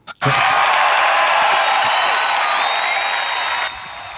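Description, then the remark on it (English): A loud, sustained burst of applause with cheering for Coach of the Year Jim Curtin begins suddenly, holds steady as a dense wash of clapping for about three seconds, then drops to a softer level near the end. “Let's give a big round of applause, please, for Coach of the Year, Mr.”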